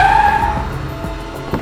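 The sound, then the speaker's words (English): A taxi screeches to a stop, a loud, high tire squeal that fades within half a second over a low rumbling engine, followed by a few light knocks and clunks as it idles. “I could lose him forever. Taxi!”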